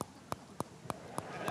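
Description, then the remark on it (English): A man rattles his teeth together in a steady series of about six sharp, dry clicks, evenly spaced roughly three per second, over a faint murmuring background. “At that time, I couldn't bite a bone, but listen to how I rattle my teeth.”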